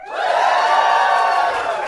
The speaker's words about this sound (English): Thank you. Quite a cheer, thank you.